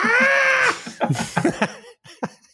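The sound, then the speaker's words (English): A person imitates Alioski making raptor dinosaur noises. There is a loud, shrill, raspy screech held for under a second, then a run of short, harsh clicking and chattering bursts that trail off. “That's what a raptor sounds like.”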